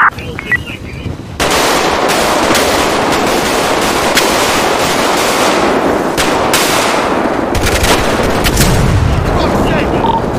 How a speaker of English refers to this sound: Five Delta 01, we got an explosion, roll fire department.